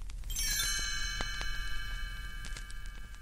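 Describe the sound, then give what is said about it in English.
A bright cluster of chimes rings once as a cue to turn the page of a book, its shimmering bell-like tones sustaining and slowly fading over a few seconds, with a few faint clicks in the background. “You'll know it's time to turn the page when you hear the chimes ring like this.”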